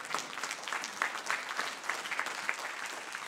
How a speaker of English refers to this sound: Can I get a hand clap of praise?